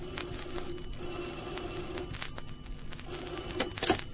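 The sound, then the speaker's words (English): An old-fashioned telephone bell rings in a continuous, rattling trill for several seconds, steady, with a few small clicks near the end and no voices. “In the morning, I had a cup of coffee and a phone call.”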